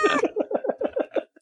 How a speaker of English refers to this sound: Was that a cat sound effect that made it to our head?